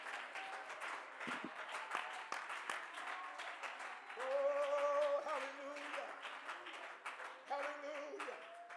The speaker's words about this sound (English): Oh, clap your hands to the Lord here right now.